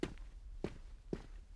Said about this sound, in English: And she was back home in the Black Forest toward the end of the war, laying in bed one night. And suddenly she wakes up and she hears footsteps outside on the sidewalk outside their little farmhouse.